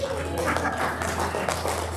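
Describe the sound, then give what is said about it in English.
Light, polite golf clapping from an audience after the words 'He has risen!', a scattering of soft, uneven claps that never builds into full applause, over a steady low hum. “To a polite golf clap.”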